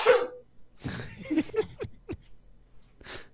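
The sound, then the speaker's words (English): A single sharp, hissy sneeze bursts out first, then a few shorter snuffling, throaty noises and soft breaths trail after it. “No, that's just the sneezer.”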